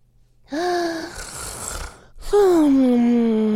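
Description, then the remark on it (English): Two loud, drawn-out snores with a raspy breathy edge and a gliding tone, like a voice imitating a dung beetle snoring fast asleep, with a brief pause between the two breaths. “The dung beetle was snoring, fast asleep.”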